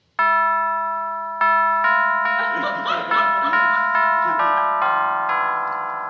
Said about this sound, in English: The Colemans have such a beautiful home. Not as nice as mine, but What a beautiful brass doorbell button.